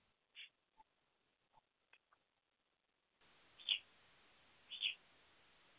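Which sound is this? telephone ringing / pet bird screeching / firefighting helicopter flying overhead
pet bird screeching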